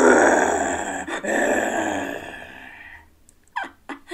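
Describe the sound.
A person imitates a grizzly bear with a long, loud, rough growl lasting about three seconds, briefly catching mid-way, then fading into a couple of short breathy sounds.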